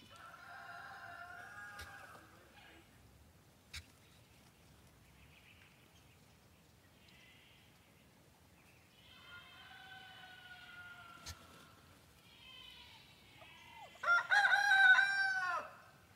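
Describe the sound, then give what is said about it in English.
Turkeys call in drawn-out, warbling bursts, then a quieter stretch, before a loud flurry of overlapping calls near the end. No voices are heard. “You're dead to me, turkeys. Get out of here.”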